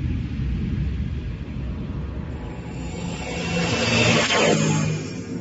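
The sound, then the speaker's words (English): The reactor jets of Sir Hubert's shuttle are started after the gyro stabilizer is switched. They roar steadily, then swell louder with a rising, whining surge of thrust before settling into a heavy, continuous rumble. Loud, with no voices. “Switch the gyro stabilizer. Start the reactor jets.”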